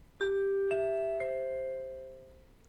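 A TV network's three-note chime jingle: three clean, bell-like tones struck about half a second apart, each ringing on and slowly fading, heard alone with no talking.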